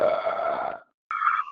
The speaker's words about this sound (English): And what a belch that was, by the way. Yes, indeed.